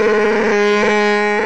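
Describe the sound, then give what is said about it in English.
A voice imitates Chewbacca, the furry alien creature, with a growling roar: one sustained, loud, harmonic-rich bellow with a gravelly wavering pitch lasting about a second and a half. “let's get Chewbacca on the phone. Let's see how he's feeling.”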